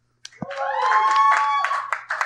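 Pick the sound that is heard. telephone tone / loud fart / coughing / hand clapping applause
hand clapping applause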